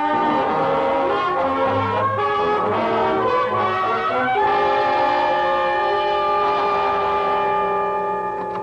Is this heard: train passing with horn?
yes